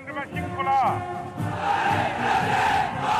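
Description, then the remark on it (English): Chinese President Xi Jinping, standing in an open-top car reviewing a military parade on Tiananmen Square in Beijing, shouts a drawn-out greeting to the army, answered by a massed chorus of many soldiers shouting back in unison, loud and sustained, rising in a rolling roar. “Standing ramrod stiff in an open-top car, reviewing a military parade on Beijing's Tiananmen Square, shouting greetings to the biggest army in the world.”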